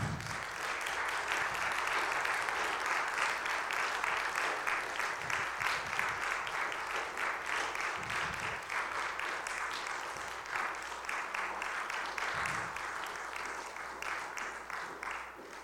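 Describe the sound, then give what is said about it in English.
A church audience applauds to thank members of the armed forces and veterans, a dense wash of many hands clapping at an even, sustained loudness for about fifteen seconds with no speech over it. “And I would like all of the members of this church to give them a round of applause and thank them.”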